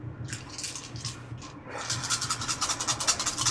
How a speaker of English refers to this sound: Okay, go ahead and roll your dice.